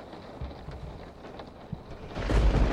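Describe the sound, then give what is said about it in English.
Low, rumbling thunder from a lightning storm grumbles in the background, then swells into a loud, crackling roar near the end. No voices. “I have to wait for the lightning.”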